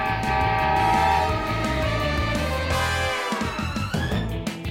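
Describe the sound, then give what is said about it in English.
A loud, sustained train horn blares over the heavy rhythmic rumble of a rolling train, Mighty Mila, as someone tries to stop it, with the horn's pitch bending and wavering toward the end. “I'm gonna fix that fence just as soon as I stop this train that's also Mighty Mila!”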